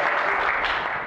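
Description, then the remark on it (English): A brief burst of applause from many hands after mention of a 22-year wedding anniversary, a dense, steady wash of clapping at even loudness for about a second, with no voices over it. “Oh, I'm not doing that for applause.”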